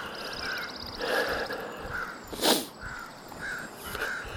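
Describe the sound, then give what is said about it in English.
A large flock of crows gathered in a big group caws repeatedly outdoors, harsh overlapping calls rising and falling from several birds, with one sharp louder burst midway and a faint rapid chatter early on. “The crazy crow season, this seems to be the time of year when the crows gather in big groups and have a big squawk off.”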